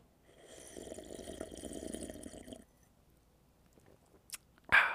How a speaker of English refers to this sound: So I'm going to give you guys a little bit of a coffee sip because my throat is getting dry as fuck. So let's take a sip of this coffee.